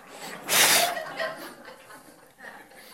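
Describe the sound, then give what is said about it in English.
A single loud, breathy sneeze, likely imitated by a voice, bursts out near the start and is followed by faint murmuring and light chuckling in the background. “Or take a step? Or sit down, thank you. Or sneeze?”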